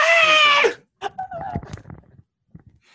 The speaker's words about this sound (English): And I'd scream.